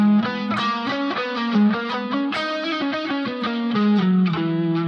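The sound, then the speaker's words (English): A distorted electric guitar runs up and down a Lydian scale, the major scale with a raised fourth, in quick, even notes over a steady, sustained low drone, loud and unbroken, with no one talking. “And what you'll notice right there when I play that, I'm playing the major scale with the raised four.”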